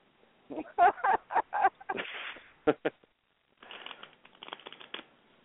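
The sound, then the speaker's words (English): A deck of Bicycle playing cards is given a double shuffle: a run of sharp snapping bursts, a brief pause, then a longer, softer riffling flutter as the deck is shuffled again. “You got well, a double shuffle going on”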